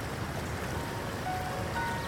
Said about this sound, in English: Oh, listen. Can you hear that little waterfall?